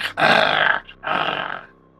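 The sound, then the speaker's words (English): During a tabletop role-playing game, a voice imitates a big cat cub's growl as the cub is being petted and calmed down, in two loud, raspy bursts with a short gap between them. The growl sounds half playful and half serious, and no words are spoken. “Like, almost that playful growl, but almost a serious growl as well.”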